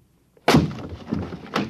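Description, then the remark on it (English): A door locked from the inside is broken in: a sudden heavy crash with splintering and rattling debris, followed by a second loud impact about a second later. No one speaks. “Mr. Holmes, are you in there? Mr. Holmes! We'll have to break in. It's locked from the inside.”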